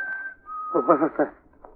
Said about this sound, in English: What was that? Sounds like a bird, maybe. Birds don't whistle like that.